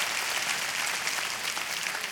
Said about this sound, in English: Let's clap our hands one more time for all these men and women honoring the teachers.